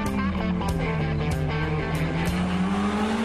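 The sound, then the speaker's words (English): A sports car engine roars loudly and steadily, its pitch climbing gradually, with squealing tires mixed in over about three seconds. There is no talking. “When we come back, this is going to be a real tough segment. Sports car.”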